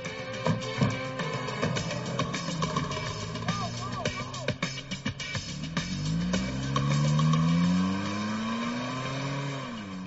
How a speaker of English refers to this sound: They threaten the teller, demanding her car keys. Escape in her car.